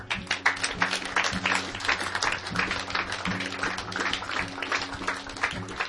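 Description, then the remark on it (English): An audience claps steadily for several seconds after a prayer, a dense crackle of many hands at an even loudness, with low sustained tones humming faintly underneath. “Go ahead and clap.”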